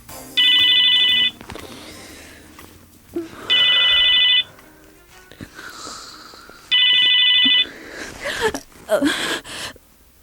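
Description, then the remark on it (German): At midday, a mobile phone rings shrilly in three loud, evenly spaced bursts of bright electronic tone, waking a sleeper, with rustling, breathy movement and a groggy gasp between the rings. “An diesem Mittag riss das schrille Klingeln des Handys Lilly aus ihren Träumen.”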